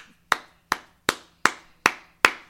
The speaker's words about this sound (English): And like I said, the love the city showed for Kobe, man, I got to give y'all a goddamn hand clap.